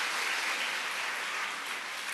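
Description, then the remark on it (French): An audience applauds for God at a church service, a dense, steady wash of many hands clapping at once, sustained and even in loudness for the whole stretch with no voices standing out. “Si tu veux applaudir, if c'est mieux d'applaudir clap, pour Dieu qui donne des promesses.”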